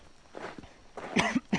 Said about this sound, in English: Do you think the cave is giving him that cough?